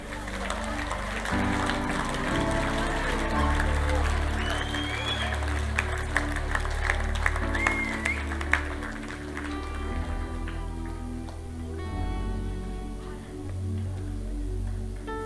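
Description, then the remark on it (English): An audience applauds people coming up to the front, in a steady, dense wash of clapping that lasts throughout, layered over sustained low musical chords, with no clear speech on top. “Come on, let's clap these people.”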